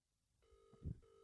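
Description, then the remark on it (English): A phone's ringback tone comes in as a steady electronic burr, breaks off briefly, then resumes. It's quiet, with a soft low thump partway through and no one speaking. “It's ringing, guys.”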